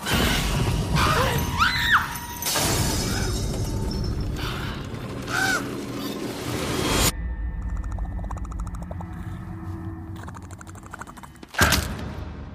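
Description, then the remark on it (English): A frantic commotion in a lounge: an invading bird flits and flaps about, breaking things amid a dense run of crashing, clattering and shattering objects, then a quieter stretch of creaks and rattles before one last sharp crash. “But one day, just as they're filming another episode of Lovely Everyday Life, they're interrupted by an invading bird. It flits around the lounge, breaking things until Mum captures it, kills it, and chucks it onto the organic rubbish.”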